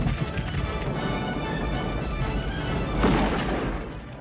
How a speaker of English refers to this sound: Wow, something's spooking the cattle. Stampede!